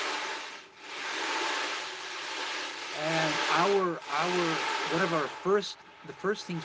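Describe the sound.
A sea drum gives a steady, ocean-like rushing hiss as the metal balls roll across its head, swelling and easing; after a few seconds a voice starts speaking over the continuing wash.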